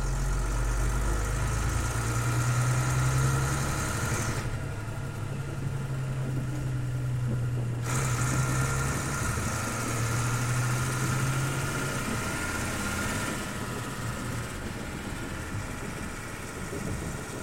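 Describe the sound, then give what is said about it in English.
An old school bus engine, recorded on dash cam footage, runs with a steady, low diesel rumble and droning hum, unbroken for the whole stretch, with no voices, as the bus drags an effigy of Ernesto Glandhand from its rear tow bar. “It's all dash cam footage, so it's a little shaky, but basically what's happening is the old school bus in front is dragging an effigy of the discredited behavioural psychologist Ernesto Glandhand from the rear tow bar”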